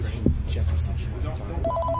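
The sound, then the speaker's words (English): A telephone rings for an incoming call, a rapid warbling electronic trill that starts near the end and repeats in quick pulses, heard over a steady low background murmur of voices. “There's a call coming in.”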